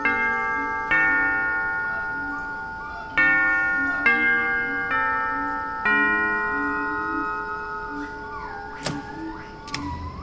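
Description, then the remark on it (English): A doorbell chime at an opulent mansion on a tropical island rings out in a sequence of about six bright, sustained tones that overlap and slowly fade, followed by a couple of sharp clicks near the end over faint background noise. “All right, let me ring the doorbell.”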